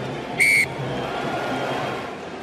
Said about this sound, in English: Stolen at the line up by Argentina, they dot it down. That is the full-time whistle. It's the Kingdom of Tonga that have produced a sparkling second half. But still, it's Argentina that win this game 28 points to 12 in Pool C at Hanazo Stadium.